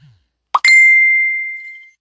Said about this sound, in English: Sorry about that. I always forget to turn off my notifications. I don't even think I know how to do that. How to get that to stop.